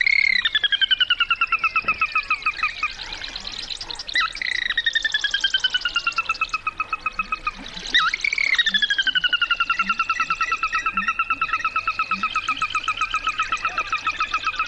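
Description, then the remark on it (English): A sora, a small chicken-like rail, gives loud whinny-like, laugh-like calls: rapid runs of high, bright notes that slide downward, repeated several times over a steady marsh background with no talking. “The Virginia rail is out there in the marshes, and even more common is a small rail called the sora, which has a fabulous whinny-like outburst, sort of a laugh-like outburst.”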